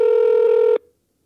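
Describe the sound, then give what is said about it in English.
A single steady telephone keypad tone, a buzzy mid-pitched beep lasting under a second before cutting off abruptly into silence, as a phone number is dialed to call the law office of attorney Carl Collins. No voices. “Oh, we're calling Carl Collins III.”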